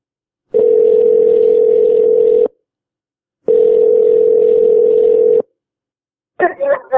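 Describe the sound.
A phone line rings on a call: two long, steady electronic ring tones separated by a short pause, loud and clear, followed by a voice briefly answering.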